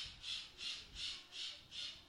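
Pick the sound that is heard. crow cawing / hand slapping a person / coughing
crow cawing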